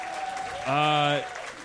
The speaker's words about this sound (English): And by the way, can we give a huge round of applause to our Quizbox producer